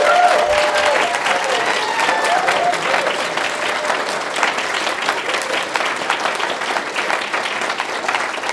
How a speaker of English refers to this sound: And today we get to do that with a few people in baptism. So before they come up, cheer for them like you're stoked for them.